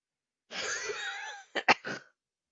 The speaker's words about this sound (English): coughing